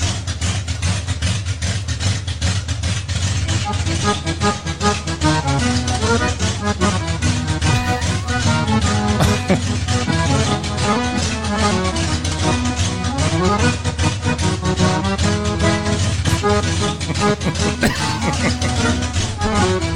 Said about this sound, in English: it's how you change from that cam, hot, good motor sound to all of a sudden you hear it do the switch